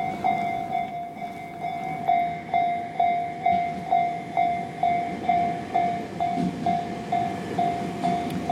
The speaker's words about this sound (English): There's a train going by, is why everything's beeping.